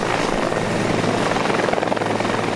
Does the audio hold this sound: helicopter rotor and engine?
yes